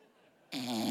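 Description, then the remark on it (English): After a brief quiet moment, a person suddenly lets out a single loud, raspy, buzzing fake snore, lasting about half a second. “You don't even snore.”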